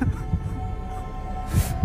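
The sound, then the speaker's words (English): Deep, muffled thumps of a man's fast, wild pounding heartbeat over a steady low hum, with one heavier beat near the end. No one speaks. “His heart beat a wild rhythm.”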